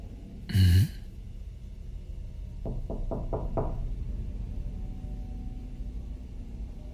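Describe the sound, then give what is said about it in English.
A quick series of about five evenly spaced knocks on a door by a friend, preceded by a brief breathy burst, with a low background rumble throughout. “It's your friend at the door.”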